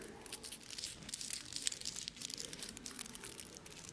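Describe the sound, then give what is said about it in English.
Continuous crisp crinkling of the shiny tinfoil wrapper of a big chocolate bar being handled, with dense bright rustles and small crackles running steadily throughout, moderately quiet, no voices. “That's that magical paper that covers chocolate up so it doesn't melt. That's the tinfoil.”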